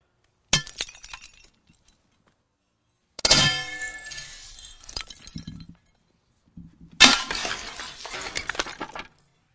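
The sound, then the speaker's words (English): Three loud smashes of clay pots being broken by an iron scepter, spaced a few seconds apart, each followed by a brief clatter of shards settling. No voices. “We'd like to use the illustration of what that would look like if God were to smash the nations like an iron scepter smashes clay pots.”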